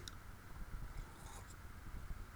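Faint mouth sounds of someone sipping water, with small wet clicks and a quiet gulp over a low background rumble. No one speaks.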